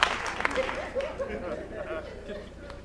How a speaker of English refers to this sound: I preach in here. All these slow hand claps. I don't care. I don't care.